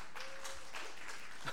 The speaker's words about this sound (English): We'll see. Yes, more applause, please.